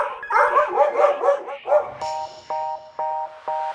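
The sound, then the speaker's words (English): A burst of excited, overlapping dog barks and yaps, loud, followed by four evenly spaced short electronic beeps. “Emery says their grandma has 4 dogs, so they want a robot to walk all of them.”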